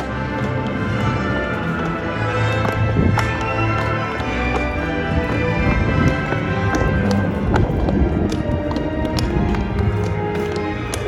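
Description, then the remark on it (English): Horse hooves clip-clop steadily on Main Street as Princess Merida rides her horse in a character cavalcade, a continuous run of sharp knocks over a dense, busy background wash of outdoor noise, with no clear talking. “We are sitting right on the corner looking right up toward the castle as Princess Merida comes down on her horse.”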